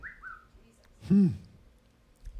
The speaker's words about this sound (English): Who's whistling that dog whistle?